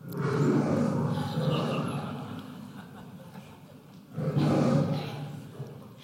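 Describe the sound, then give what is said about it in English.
A lion roars loudly in two deep, rumbling bursts: a long growling roar first, then after a short lull a second, shorter roar. “He's a roaring lion waiting to devour you.”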